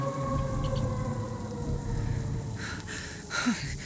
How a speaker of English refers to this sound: Was that her? That was the howl I heard earlier. She's coming our way.